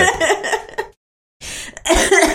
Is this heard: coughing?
yes